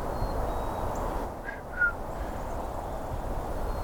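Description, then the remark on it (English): A black-capped chickadee sings a brief two-note whistle, faint and distant, over a steady wash of outdoor background noise. “It's a chickadee singing.”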